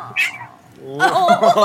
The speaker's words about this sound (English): There's a cat!